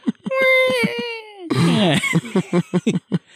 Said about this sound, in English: So we read I mean your dog whine a little bit there. Yeah. That's we'll get it out with the plugins and figure out how to mix it.